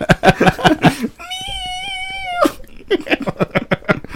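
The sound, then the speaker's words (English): A single drawn-out cat yowl, wavering and loud, lasting about a second, with people talking just before and right after it. “did you hear a cat? Data's cat. Data's cat. Slammed against the wall.”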